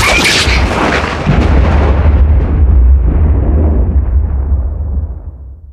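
A short audio stinger: one loud, explosive boom with a crackling, bright attack, then a deep rumbling decay that fades out over about five seconds. No voices.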